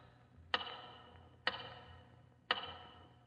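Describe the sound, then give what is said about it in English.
A big tower clock ticks slowly and steadily, three sharp, resonant clicks about a second apart, each ringing briefly before fading, over a low steady background hum. “Once again, your eyes wander to the big tower clock.”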